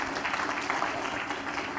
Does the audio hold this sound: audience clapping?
yes